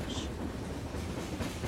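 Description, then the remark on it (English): A freight train rumbles past with a steady, loud clickety-clack of wheels over the rails, and a brief higher hiss rises near the start. “This is a train sounds, guys. Freight train sounds. Train ambient noise.”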